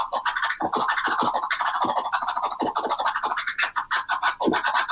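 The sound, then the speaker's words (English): Rapid turntable scratching in a one-handed chirp style, with quick clipped bursts swooping up and down in pitch, loud and continuous for several seconds with no talking. “There you go, and you're basically doing a one-handed chirp.”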